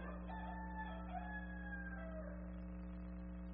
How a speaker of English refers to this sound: And Peter remembered. Terror of that rooster crow.